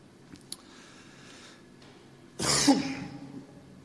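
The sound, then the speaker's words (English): A single harsh cough bursts out, loud and rough for under a second, following a stretch of near silence with a couple of faint clicks. “I'll just try and avoid the microphone when I cough.”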